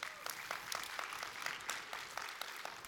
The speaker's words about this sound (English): So we're using God's resources to grow God's resources, right? Please clap for that.